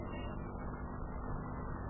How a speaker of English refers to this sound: Well, here comes the professor's car. See the fox tail hanging from the radio antenna?